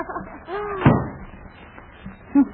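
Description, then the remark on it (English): A door at City Hall swings open with a short creak and then slams shut in one loud, sharp bang, followed by a softer knock a moment later. “See, there's two doors here. I'll just try this one.”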